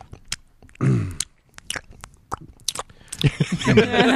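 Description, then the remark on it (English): Wet, squishy chewing and smacking close to the microphone, with a burst of voiced mouth noise early on and denser, louder mastication sounds building toward the end. “First off, it's chewing into the mic.”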